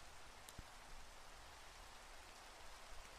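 Steady rain patters down in a soft, continuous hiss with no voices, broken once by a single brief, sharp tap early on.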